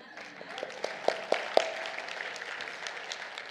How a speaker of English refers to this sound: Should all be clapping now.